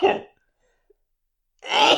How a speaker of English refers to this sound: Bless you. That sneeze was more enjoyable than what you just said then.